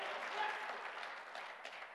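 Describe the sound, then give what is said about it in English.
A church audience claps their hands together, a dense, steady wash of applause that holds at an even level throughout, with no voices standing out above it. “Now this church is going to clap their hands and begin to believe that you are worth more than a pool.”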